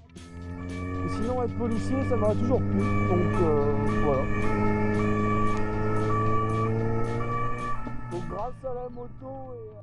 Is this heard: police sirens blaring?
yes